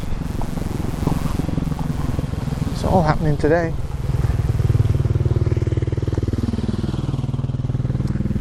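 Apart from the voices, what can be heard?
motorbike passing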